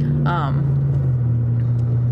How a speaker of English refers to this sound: someone has a very loud vehicle nearby me.